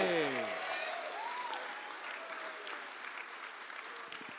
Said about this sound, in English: The massive rebel army cheer, who for some reason didn't take part in the battle at all.